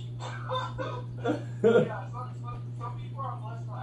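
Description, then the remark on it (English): A person imitates a chicken with a quick run of short, throaty clucks, one louder burst in the middle, over a steady low electrical hum. “Chicken.”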